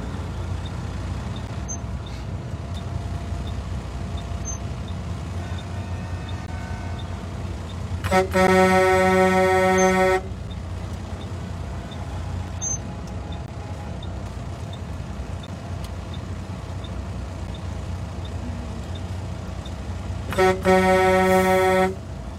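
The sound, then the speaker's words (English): Steady low rumble of road traffic and idling engines, broken twice by a long, loud vehicle horn blast, one early and one near the end. No one speaks. “Why is there so much traffic?”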